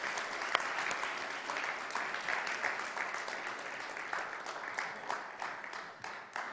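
A crowd applauds steadily for several seconds, a dense, even patter of many hands clapping at a moderate level with no voices standing out, as a woman steps up onto the stage.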